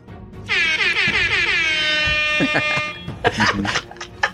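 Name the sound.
air horn blast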